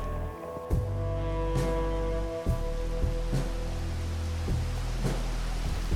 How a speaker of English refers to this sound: It began to rain sometime while we were setting up.